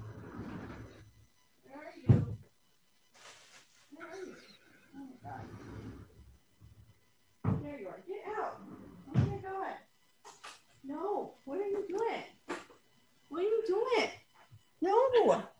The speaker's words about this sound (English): I need to get better baby locks. It's like a sliding door. And so like the baby locks just like pulls on it hard enough and the baby locks don't work.